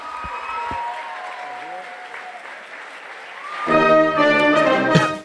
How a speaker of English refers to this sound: And then the best part is he just points. He goes, am I supposed to go off this way? Am I? And I, and as he does that, the crowd there, they go, woo.